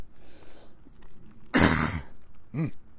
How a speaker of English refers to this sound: I'm gonna try and cough away from you guys, but apologies ahead of time if I miss one.